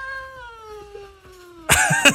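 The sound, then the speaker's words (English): A person imitating an angry cat noise: a long, sustained low yowl that slowly sinks in pitch, then breaks into a loud, harsh hissing spit at the end, fairly loud. “And this is the noise he gives you. Oh. Oh, it's an angry cat noise, right?”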